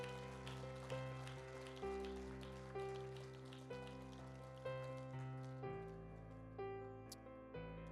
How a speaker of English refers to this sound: Let's give them a nice big hand clap as they come forward.